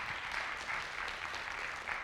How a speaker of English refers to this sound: Come on, somebody. Come on, we can give him a better round of applause than that.